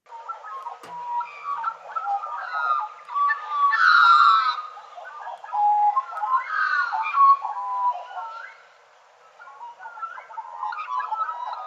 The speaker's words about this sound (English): Oh, this is one of my favourite birds. That bird call is from the Australian magpie.